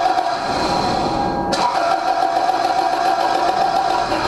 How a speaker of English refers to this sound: And then I went to start the big V8 engine, but it wouldn't start.